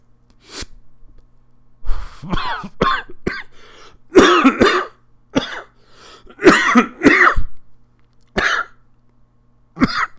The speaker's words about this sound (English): When I'm on the phone with my mom and I cough like that, she goes, take a drink of water.